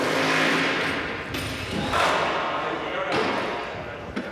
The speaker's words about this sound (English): Power tools, hydraulics, sewing machines. These are the sounds of staging for The Jonah People, A Legacy of Struggle and Triumph.